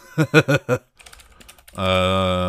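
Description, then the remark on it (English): A quick burst of clicky computer keyboard typing, rapid irregular keystrokes lasting under a second, sandwiched between a short rhythmic vocal sound before it and a sustained hummed tone after. “Click, clack, keyboard.”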